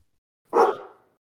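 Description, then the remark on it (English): A single sharp bark from a person imitating a dog, loud, with a sudden onset and a short tail that fades in under a second, with nothing else around it. “Every once in a while, I just have those random barks come across me.”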